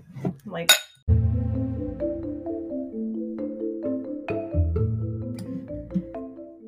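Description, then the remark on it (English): A few quick, bright clinks of glasses touching together in a toast, crisp, followed right away by sustained musical tones that carry on to the end. “Cheers, witches. Cheers. Cheers.”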